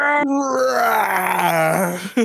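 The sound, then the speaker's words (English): A person voices a long, drawn-out monster roar imitating Godzilla, a strained, harmonic groan that slowly falls in pitch and holds loudly for about two seconds before breaking off. “Were you roaring?”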